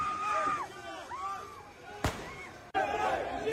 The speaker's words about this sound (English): Gunshot in the background.